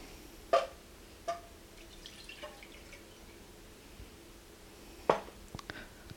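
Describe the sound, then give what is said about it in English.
Soy sauce being poured, heard as a few quiet, separate splashes and drips spaced out over several seconds rather than a steady stream, with no talking. “Now take your soy sauce.”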